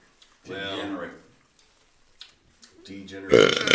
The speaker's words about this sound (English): I wonder how your burps are going to come across with people. Look how fucking loud that is.